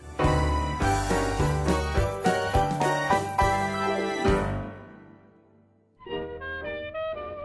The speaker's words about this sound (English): And keep those sleigh bells ringing all night long.